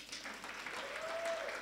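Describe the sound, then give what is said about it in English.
A brief burst of audience applause for a woman, dense and steady clapping from a small crowd with a faint whistle-like tone rising through the middle. “Won't you clap for her?”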